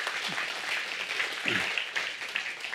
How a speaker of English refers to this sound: Hey, can we just give the Lord just a round of applause? Amen.